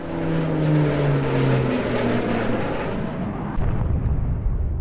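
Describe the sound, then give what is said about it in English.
A large American propeller spy plane roars loudly overhead, its droning engine tone sliding lower as it passes, with a steady rumble filling the whole recording and no voices. “The smaller Chinese jets were monitoring it a safe distance away, when the lumbering US aircraft suddenly veered and rammed into one.”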